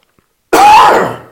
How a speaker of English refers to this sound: I apologize for that coughing, but it had to be done.